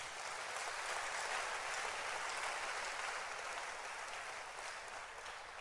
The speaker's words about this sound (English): ladies and gentlemen, today, as we celebrate our wonderful brothers and sisters, let's clap our hands for them again.